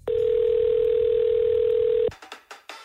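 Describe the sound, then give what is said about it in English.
A loud, steady telephone dial tone hums unbroken for about two seconds, then cuts off abruptly, followed by short, faint bursts of a voice coming down the line, as the caller phones an internet provider's support line. “I thought I'd record me on the phone to one of my internet providers to try to get this thing sorted.”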